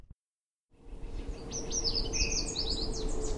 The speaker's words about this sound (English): Maybe a little farther down the path, we've got some yellow warblers singing.